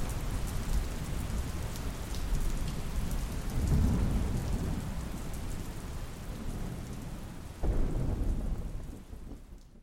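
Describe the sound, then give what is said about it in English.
Steady, heavy rain hisses throughout while deep rolling thunder rumbles over fields toward mountains to the west, swelling around the middle, with a sharper crack near the end before the storm fades slightly. No voices. “The storm came on fast. The world going from noon to midnight in a blink. Thunder rolled out over the fields, slapping against the mountains to the west.”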